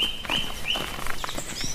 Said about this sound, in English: Is that a trill again? That's still a thrush? Song thrush, yeah.